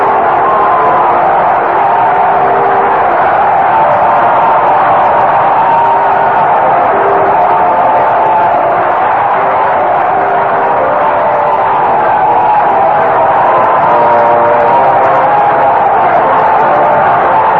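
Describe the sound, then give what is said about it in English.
A stadium crowd at a baseball game cheers the final score on the scoreboard, Cleveland defeating Oakland 3-1, in a loud, steady roar that holds for the whole stretch without letting up, a dense wash of many voices with no single speaker standing out. “And the crowd is cheering the final score on the scoreboard.”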